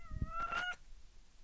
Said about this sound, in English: And meowing. My cat says hello.